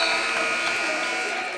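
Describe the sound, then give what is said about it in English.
A loud arena buzzer blares in one steady, harsh tone lasting well over a second, ending the first half of a basketball game, with a noisy crowd murmuring underneath. “Spin through the lane, 2-1-0, got it, and the buzzer.”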